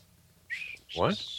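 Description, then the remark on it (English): A person whistles in two short bursts: a steady held note, then a brief sliding tone that dips down with a breathy, voiced edge. Quiet background otherwise. “You have to be able to whistle before you whistle innocently.”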